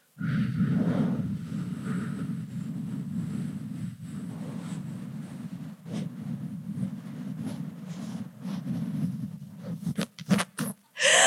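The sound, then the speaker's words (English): A long, steady rush of breath as several people exhale together for about ten seconds, followed by a few sharp, choppy gasps at the end. “Just try just breathing out and not breathing in.”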